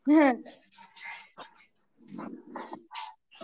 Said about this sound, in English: Sorry, the dogs are barking again.